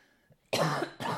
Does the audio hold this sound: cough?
yes